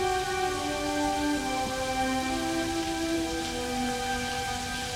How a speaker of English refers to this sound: Now she's back in her quarters, getting into the shower.